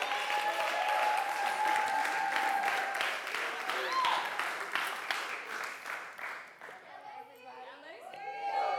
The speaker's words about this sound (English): if you wanna come up, could we give her a round of applause?